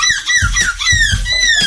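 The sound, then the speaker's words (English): Voices imitate seagull calls: a rapid run of loud, squeaky, high-pitched cries, each gliding downward in pitch, overlapping with one another, with a few soft low thumps underneath. “I need people impersonating those.”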